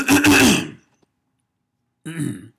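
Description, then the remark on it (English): A loud throat clearing in one rough burst, then about a second of silence before a short voiced grunt-like sound. “I need to clear my throat.”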